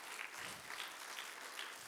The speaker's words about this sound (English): Wasn't it great? Isn't that awesome? Can we give one more round of applause